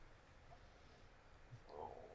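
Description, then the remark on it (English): In a quiet pause in a conversation with no talking, a faint stomach growl gurgles low, swelling briefly into a louder rumble near the end. “There was a break in the conversation just long enough for somebody's stomach to growl.”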